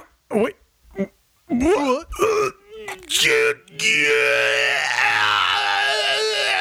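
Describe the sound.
A man imitates agonized screaming as if giving birth to a chest burster: a few short, strained wails and groans with shifting pitch, then a loud, raw, sustained scream that holds for the last few seconds.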